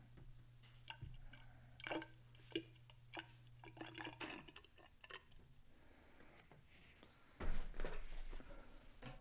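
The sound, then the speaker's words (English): Water being poured into a bong fitted with a nail, to set its water level, heard as irregular drips, trickles and small splashes, with a louder gurgling burst near the end and a faint low hum early on. “I want more water.”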